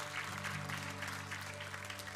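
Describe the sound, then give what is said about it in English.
A church audience claps hands to the Lord in a dense, steady wash of overlapping claps, sustained over a low droning tone, with no voices on top. “Let's just give a hand clap to the Lord.”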